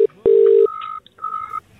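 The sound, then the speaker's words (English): A phone line's electronic ringing tone on an outgoing call: a low steady buzz, then higher pulsed beeps in short bursts with brief gaps. It's loud, with no voices. “She'll give G a call then.”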